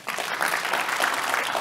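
A crowd claps together for under two seconds, a dense, steady patter of many hands at even loudness with no voices over it.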